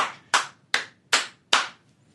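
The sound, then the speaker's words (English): A single person claps their hands four or five times in a slow, steady rhythm, each clap sharp and crisp, with silence between them and no talking. “Yeah, I'm giving her a round of applause.”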